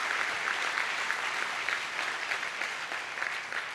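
A crowd at a church Christmas service applauds steadily, a dense wash of many hands clapping at an even, fairly loud level with no voices breaking through, holding throughout.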